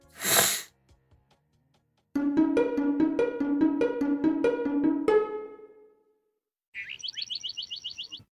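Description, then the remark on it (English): A single loud, sharp nasal sniff from nasal congestion at the start, followed after a pause by a bright electronic melody of repeated notes and then a quick run of high chirping beeps. “Still a little congested, so if I get stuck, I'll No worries, I'll redo it.”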